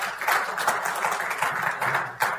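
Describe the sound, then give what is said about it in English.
A short burst of audience applause, given as a vote by those who think something is turning clockwise, a steady wash of many hands clapping with a few sharper claps standing out, moderately loud and with no voices over it. “If you think it's going in a clockwise direction, how about you just do a little applause to see if that's correct?”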